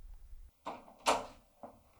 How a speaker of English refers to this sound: I'm going to open the door.